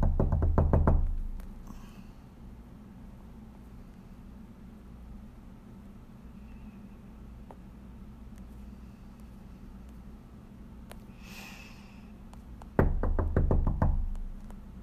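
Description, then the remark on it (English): A loud flurry of rapid knocks on a door during a wellness check at about 4:46 a.m., then a long quiet stretch with a low background rumble, before a second burst of heavy, insistent knocking near the end. “open the door. I'll do a wellness check on you.”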